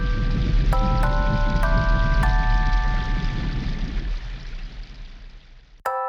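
Steady hissing rain falls throughout, with a few clear bell-like tones chiming in one after another early on. The rain thins out toward the end before a brief sharp sound.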